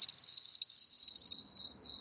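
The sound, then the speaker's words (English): A cricket trills steadily at night in a high, thin buzz, punctuated by a few sharper chirps, with no voices present and nothing else in the background. “So you go outside at night, and you listen for cricket song.”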